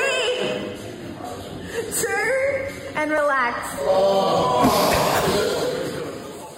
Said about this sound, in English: That was quite the groan. What a bunch of cats. No, it was brutal. So they were doing a glute exercise, which is a leg extension one, and they battled through it.